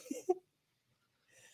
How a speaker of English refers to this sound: Did you just cough? I did. Okay. I was making sure. Because I wasn't sure.